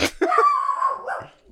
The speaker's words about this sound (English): If you think about it, a bark is like a dog's way of saying sacre bleu. Yeah, my little dog was just saying, sacre bleu, who's out there?